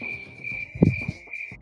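Crickets chirp in a steady, high continuous trill, with a few soft low thumps and rustles underneath. No one speaks.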